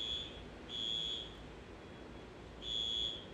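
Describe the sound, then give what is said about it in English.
A fire alarm blares in repeated high, piercing tones, each pulse lasting about half a second with gaps between, over a steady low rumble of background noise. “All right, I'm out. Fire alarm.”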